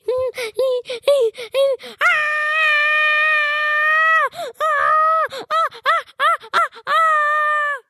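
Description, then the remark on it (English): A person yells loudly while running around a table: a string of short, high-pitched shouts, then one long sustained yell lasting about two seconds, followed by more quick bursts of yelling. “I just ran around the table. I yell very loudly so you guys can hear me in my microphone.”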